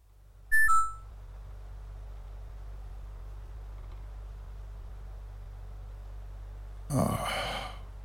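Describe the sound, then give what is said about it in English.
A single short two-note electronic alarm beep from an internal conduction alarm on a moonbase sounds loudly at the start, then a steady low hum fills the silence before a breathy, sigh-like rush of noise near the end. “I am your internal conduction alarm.”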